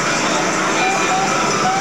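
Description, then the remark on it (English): Loud motorcycles, with a police motorcycle among them now and then, roar past an intersection in a steady, dense wash of engine noise, with a thin whining tone rising out of the rumble. “These are regular loud-ass motorcycle miscreants, but then every now and then a cop with them.”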